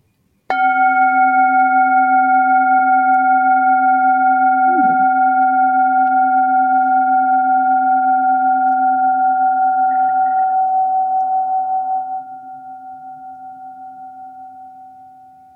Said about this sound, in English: I mean, did you just ring like the Zen master gong? I did.